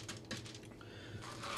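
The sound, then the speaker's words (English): Quarter-cup scoops of dough dropping onto paper in a few soft taps and light scrapes, quiet, with no voices. “And then what we're going to do is we're going to plop it on the paper.”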